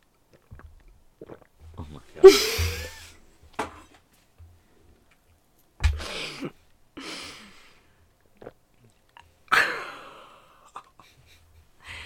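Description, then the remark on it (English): A person gulps and swallows loudly, several wet gulping bursts spaced a few seconds apart, with breathy gasps and quiet pauses in between. “Can you guys hear me gulp?”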